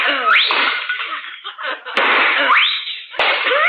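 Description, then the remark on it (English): Two sharp gunshots crack out about a second apart, shooting two china pheasant ornaments. Each shot is followed by a bright crash of breaking china, over a busy, noisy background with rising whistling sweeps. “Oh, you shot those two China pheasants.”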